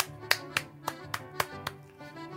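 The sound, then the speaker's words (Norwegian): Six crisp hand claps in a steady, even rhythm, then the clapping stops, leaving a soft, steady background hum. No one speaks. “Jeg klapper I hendene igjen, fordi Jørgen ikke her og kan si at jeg må slutte å klappe I hendene.”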